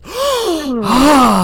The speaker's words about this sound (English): Oh, gasp.